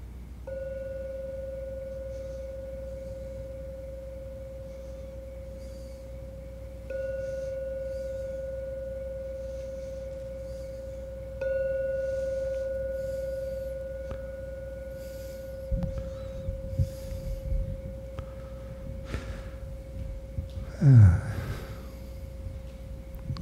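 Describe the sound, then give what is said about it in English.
A meditation gong rings three times to close a meditation, each strike starting a steady, humming tone that lingers and overlaps the next. Afterward come soft rustling and a breathy exhale. “And now I invite you, I'm going to ring the gong 3 times.”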